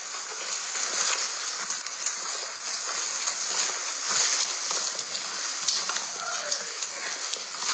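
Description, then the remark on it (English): Heavy, clumping footsteps of people walking thud in a steady repeated rhythm over a constant broad hiss of background noise on a recording, with no clear speech. “You hear the footsteps, the clump, clump, clump, clump.”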